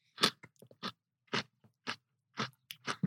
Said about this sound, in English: God, I love biting into a honeycomb. Oh. My God, the crunch on this is fantastic.